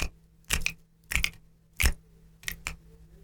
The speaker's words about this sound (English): Since it's the start of rainy season, why don't we learn the rain clap? First, you silently rub your fingers together. Rub your 2 hands together, making a very soft sound. Softly clap your hands together. Then, snap your fingers.